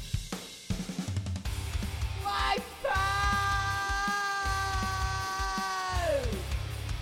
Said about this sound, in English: There it is. That was rubbish. Yeah, that was created by you, actually. It was. So just me screaming. Wipeout!